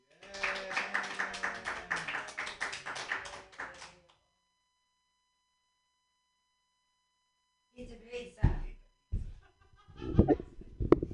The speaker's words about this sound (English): Okay, clap for me. Yay.